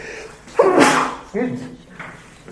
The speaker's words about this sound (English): I'm about to sneeze again. Might even blow my nose in a minute.